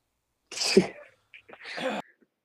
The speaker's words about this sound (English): This is the part where … saves me while I fucking cough my ass off